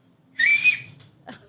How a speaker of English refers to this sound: I can whistle super loud.